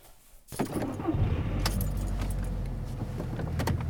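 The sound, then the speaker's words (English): A car engine rumbles low and steady from inside the vehicle while driving to the bus station, coming on after a brief quiet start, with keys jangling and clinking in bursts over the drone of driving. “I'm crying in the car all the way to the bus station.”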